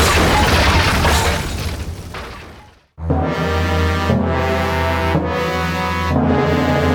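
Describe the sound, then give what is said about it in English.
A loud, roaring crash as the burning roof of a blazing barracks collapses, rumbling and fading out, then a brief silence before sustained orchestral music takes over. “risking their lives to rescue their stolen loot, suddenly the roof crashes down upon them.”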